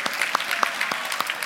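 A group of people claps in a steady, dense patter of overlapping handclaps, moderately loud and bright, with no voices standing out over the applause.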